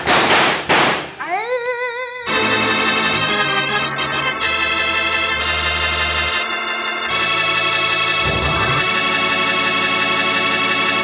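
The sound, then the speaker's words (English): Two sharp, loud gunshots crack in quick succession in a scene of The Cisco Kid radio drama, followed by a rising whistling tone and then a sustained, swelling burst of orchestral music that carries on to the end. “All right, drill him, Roy!”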